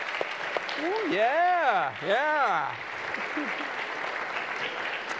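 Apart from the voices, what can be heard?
audience clapping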